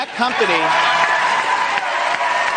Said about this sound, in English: And listen to this crowd in Orlando, Florida erupt.